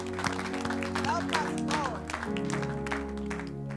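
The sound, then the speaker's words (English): A church audience claps for Jesus in a dense, steady burst of applause, with sustained musical tones humming underneath and a few voices rising and calling out through the noise. “Clap for Jesus.”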